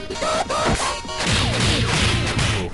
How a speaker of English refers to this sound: Notice how much better the punching sounds than the voice there.